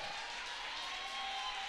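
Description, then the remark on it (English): A crowd claps together in a building during a sermon, many hands blending into a dense, steady wash of hissing applause that stays even and fairly soft for the whole moment, with no voices standing out. “I need you to clap your hands in this building.”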